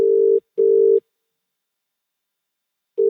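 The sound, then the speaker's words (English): A telephone ringback tone sounds loud and clear while a phone call is placed, before it connects: a steady low-pitched double burst, then a pause of about two seconds before the next pair begins. No one speaks. “Here's our phone call.”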